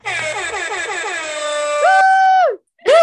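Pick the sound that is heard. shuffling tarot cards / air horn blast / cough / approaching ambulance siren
air horn blast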